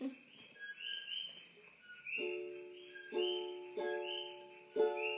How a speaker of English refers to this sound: She live with hella birds? Oh yeah, for sure.